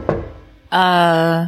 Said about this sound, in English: Then there's another knocking on the door.